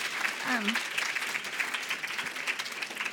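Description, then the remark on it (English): Steady audience applause, a dense wash of many hands clapping at an even level for a few seconds, with a brief voice rising faintly underneath near the start. “That is, yes, that does deserve applause.”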